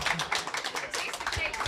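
A crowd applauds, many hands clapping in a dense, steady patter that stays fairly loud and even for the whole short stretch.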